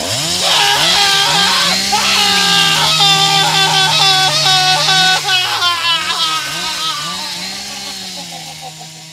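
A chainsaw engine runs loud, its buzzing whine revving up and down in repeated surges before settling and easing off slightly toward the end.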